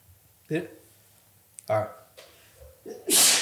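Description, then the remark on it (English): A single sharp sneeze bursts out near the end after a couple of short vocal sounds, loud against an otherwise quiet background. “Bless you.”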